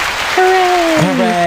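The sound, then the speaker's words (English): A short burst of applause, a steady crackling patter of clapping, with a drawn-out cheering voice rising over it and sliding downward in pitch. “Round of applause for no sideburns.”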